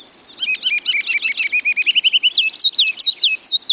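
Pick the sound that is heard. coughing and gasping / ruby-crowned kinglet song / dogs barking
ruby-crowned kinglet song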